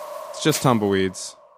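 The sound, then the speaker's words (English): A person imitates wind with their voice: a brief rising, hollow whoo that swells and bends upward, then trails off into a soft breathy hiss. It is fairly loud and short. “But there's a little wind coming through.”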